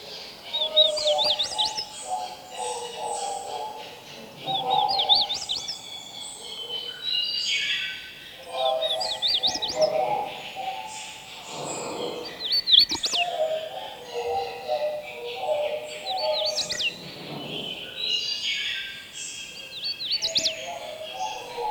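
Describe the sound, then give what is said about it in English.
Hooded warbler songs in two distinct song types, bright whistled phrases repeating every few seconds, clear, with a busy background of other birds chirping and calling throughout. “Here are two song types from hooded warblers.”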